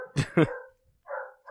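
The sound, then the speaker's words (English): Dogs barking in a quick burst: two sharp barks back to back, a short pause, then more yelps and whines, fairly loud. “Oh my god, the dogs are going crazy.”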